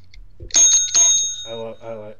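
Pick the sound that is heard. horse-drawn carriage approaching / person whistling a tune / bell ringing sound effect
bell ringing sound effect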